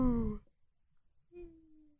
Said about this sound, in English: That was like an excited woo-woo, and then it turned into a yawn. Yeah, I could see because your mouth was open really wide for the first woo, and then got even wider for the second, and then it just stayed open for a yawn.